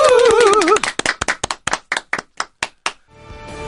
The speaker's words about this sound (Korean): 2013년도를, 예, 우리를 즐겁게 했던 영화들에게 감사의 마음으로 박수 한번 치면서 이 코너 한번 끝내볼까요? 자, 박수!